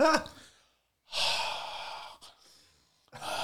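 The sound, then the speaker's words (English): A voice imitates the heavy, slow breathing of a sleeping man: a short gasp, then a long, airy exhale, a pause, and the start of another loud breath, with no words. “But he's like sleeping and he's turned his head like that and he's just sleeping, breathing and so on and so forth.”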